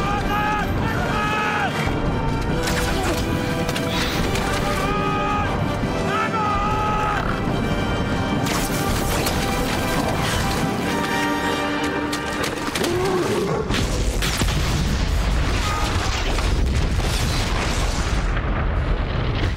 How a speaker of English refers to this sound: this is the explosion from Helm's Deep in The Lord of the Rings, The Two Towers